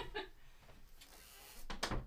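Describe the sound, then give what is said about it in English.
A door swings shut, a short creak and shuffle giving way to a solid thud near the end, with faint background noise around it. “really quick, I'm going to close this door.”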